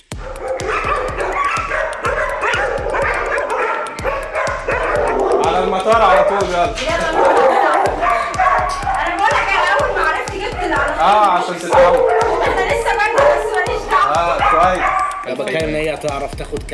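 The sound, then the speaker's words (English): A street dog that is not used to people barks and yelps in agitated bursts, the loud calls continuing across the whole stretch while people talk over them. “يعني كلب مش متعود على البني ادمين كلب بتاع كان في الشارع”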